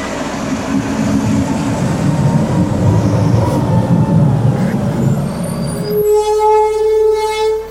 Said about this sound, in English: Hold on, let me let this truck go by.